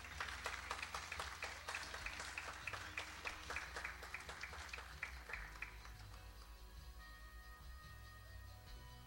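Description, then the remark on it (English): A church audience at a morning service applauds its mothers, many hands clapping at once with a steady, partly rhythmic beat for about six seconds before it fades into a low murmur and hum. “And then can we give our mothers one more round of applause this morning?”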